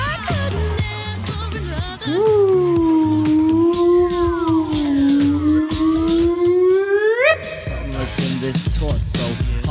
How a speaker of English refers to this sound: You know how we do it. Death whistle.